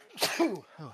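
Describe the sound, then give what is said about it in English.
A single forceful sneeze bursts out with a breathy hiss, followed by a short voiced trailing sound. “It's the only bassy part about me is my sneeze.”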